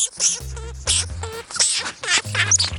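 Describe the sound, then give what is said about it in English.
A lemming, a small rodent of the grassy Arctic tundra, gives a rapid run of shrill, squeaky chirps and trills, repeated in bursts over a low steady hum, with no talking. “That's the sound of an actual lemming, and they hang out in the grassy tundra of the Arctic, a harsh landscape that's covered in snow for most of the year.”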